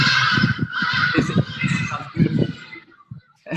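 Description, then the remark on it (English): Hadeda ibises in Johannesburg call loudly in a raucous, overlapping chorus of harsh, nasal cries that run together for a few seconds before breaking into shorter bursts and tailing off. “Only in Africa can you hear that. This is the Hardy Dars at work.”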